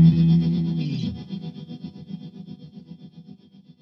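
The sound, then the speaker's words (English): A guitar rings out through an MXR Reverb pedal set to plate mode with every knob at 12 o'clock, starting with a loud, dense chord that fades into a long shimmering tail with no one speaking. “This is the MXR Reverb. And at the moment it's on plate with everything on 12 o'clock.”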